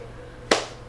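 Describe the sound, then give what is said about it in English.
A single sharp hand clap, a sudden bright smack that decays quickly over a faint steady hum, with no talking. “I just clapped, and that is not what you're supposed to do during a podcast.”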